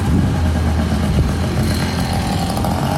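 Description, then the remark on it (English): A loud, small Tomos moped scooter engine roars steadily, a buzzy, rough drone with rattling low-end that stays strong throughout, no voices present. “Okay, the guy on the Tomos, on the little Tomos scooter.”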